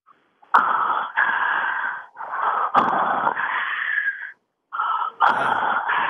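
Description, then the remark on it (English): A caller on the telephone imitates Darth Vader's mechanical respirator breathing from Star Wars: a series of long, raspy, hissing inhales and exhales in a slow steady rhythm, loud over a thin telephone-like line, with no talking. “I called to make the most infamous sound of the universe. That's Darth Vader's breathing.”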